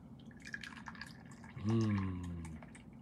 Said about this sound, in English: As you all put some remarkable things into the chat section here, I'm going to pour myself another cup of tea.